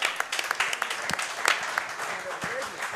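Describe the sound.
An audience breaks into applause for a guest coach on a show, a dense, steady wash of many hands clapping that holds for the full three seconds, with faint indistinct voices mixed into the crowd noise.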